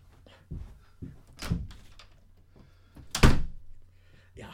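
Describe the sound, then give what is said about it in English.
A door is handled and shut, with a few dull knocks and thumps leading up to one loud slam, followed by a lighter bump at the end. “Close the door anyway, you.”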